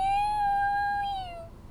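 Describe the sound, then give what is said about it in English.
A person imitates a cat with one long, sustained, high-pitched meow that holds steady and then slides downward as it fades, with no other sounds. “That's like a dying cat.”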